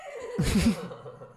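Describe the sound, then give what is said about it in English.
A horse gives one short, loud whinny lasting about half a second, a breathy harmonic burst that fades quickly into a quiet background with no one speaking. “He got on a horse.”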